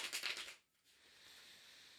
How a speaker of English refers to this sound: And you'll connect to the cards by hearing the sound of them being shuffled.